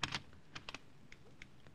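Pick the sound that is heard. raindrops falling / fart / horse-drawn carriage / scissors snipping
scissors snipping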